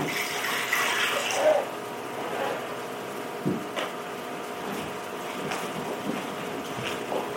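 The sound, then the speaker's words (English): Water pours into a hand-washing basin for a second or two, then settles into a steady low trickle broken by a few soft splashes. It's moderately quiet, with no voices. “And some water in it.”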